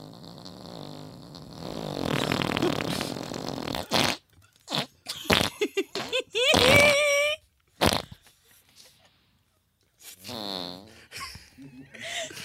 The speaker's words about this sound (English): Who farted?